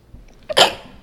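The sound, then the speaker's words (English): A single sneeze by a woman with a brief stuttering catch just before the main burst, a sharp, bright, breathy explosion that quickly trails off. No one talks. “She got a stuttering sneeze.”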